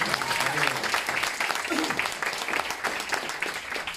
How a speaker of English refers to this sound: So a big round of applause, please, for us.